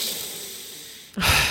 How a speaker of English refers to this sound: It sounded like a pant, but that's okay.